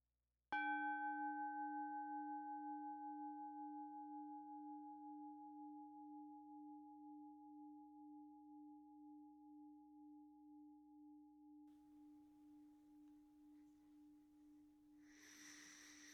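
A meditation bell is struck once to begin a meditation practice, then hums with a warm, pure tone that fades very slowly and wavers gently for over fifteen seconds. A soft rustle comes in at the end.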